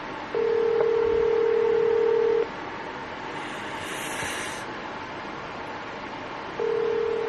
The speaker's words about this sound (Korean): 아, 이 친구가 평소엔 전화를 잘 받는데 왜 오늘따라 이렇게 전화를 받지 않는 것일까요?